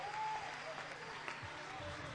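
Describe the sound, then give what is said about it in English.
An audience at a church service breaks into steady, dense applause welcoming a guest speaker, a continuous wash of many hands clapping at a fairly loud, even level with faint murmurs underneath. “would you welcome him tonight as he comes to do whatever it is the Lord wants to do in this place tonight.”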